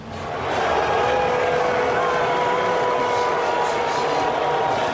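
A large stadium crowd at Nationals Park in Washington, D.C., boos President Trump loudly during Game 5 of the World Series, a steady roar of many voices with sustained low jeering tones that swell in and hold for several seconds, with chants of "lock him up" blended into the din.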